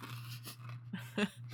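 Crunching on hard candy: a few quiet, crackly bites with one sharper crunch near the end, heard alone over a low steady hum with no talking.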